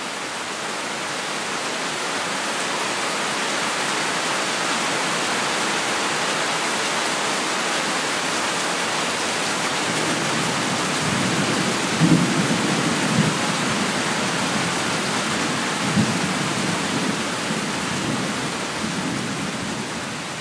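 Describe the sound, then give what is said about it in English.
Heavy rain pours in a steady, dense hiss throughout, with low rumbles of thunder rolling in during the second half, including a couple of stronger booms. No one speaks. “That sounds like it's really coming down.”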